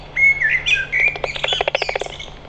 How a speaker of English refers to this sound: I love the combination of the blackbird and the bat detector. Yeah. So we've got the sort of the blackbird singing mournfully of the passing of the daytime, and then the bats kind of chattering away at the prospect of night, isn't it?